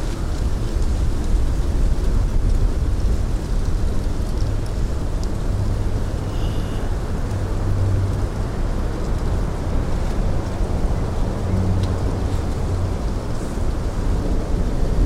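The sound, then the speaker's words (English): Steady wind roars across a reservoir, whipping up small lapping waves on the surface, a dense, continuous low rumble and hiss that stays loud and even throughout, with no voices. “The wind is whipping up sweet little waves on the reservoir surface.”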